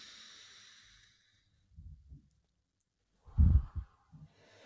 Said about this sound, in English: So y'all, let's just take a deep breath together real quick. Just breathing in and breathing out.